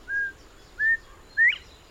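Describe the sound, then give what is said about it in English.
Three clear whistled bird notes, evenly spaced, each rising slightly, with the last one sharper and slurred upward, like a quail's call as mimicked by a starling, heard alone against faint background. “And this quail.”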